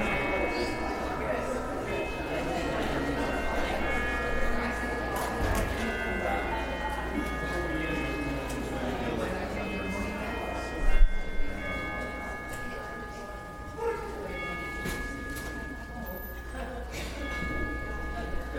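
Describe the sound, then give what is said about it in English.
Bright chimes ring out with long, sustained tones that linger throughout, played to end the greeting time at a worship service, layered over a steady murmur of many people chatting and greeting one another. “So when you hear Cornell play the chimes, then please go back to your seat.”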